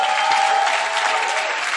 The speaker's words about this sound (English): I thought by now you'd be clapping for Jesus.